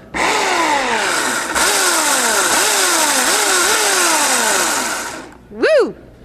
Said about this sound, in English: Let's hear it. We carved the bar, and we've also done five other cool ice carvings besides the bar. I wish there was a motor on this thing, but it turns out that chainsaws that are electric work a lot better on ice sculpture.